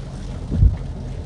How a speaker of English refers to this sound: So I got both hands on the wheel now because this rain is ridiculous.